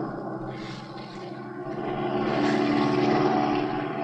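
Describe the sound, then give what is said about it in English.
A propeller airplane engine drones steadily in flight as the plane swings over toward another plane below, a dense buzzing hum that swells louder midway and holds strong to the end, with no voices. “Oh, pilot, swing over so we can get a look at that plane down there.”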